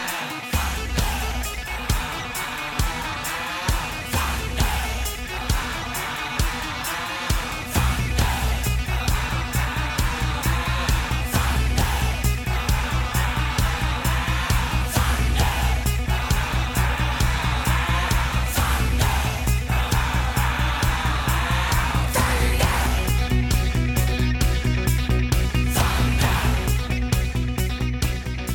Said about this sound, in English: the massive hit …, which comes out and restores the heavyweight title for … in the heavy rock arena